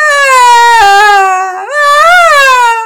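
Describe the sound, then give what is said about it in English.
A baby screams in her bed in two long, loud, high-pitched wails, the first sliding slightly downward and the second rising then falling, with a brief gasp between them. “Patience continued to scream in her bed.”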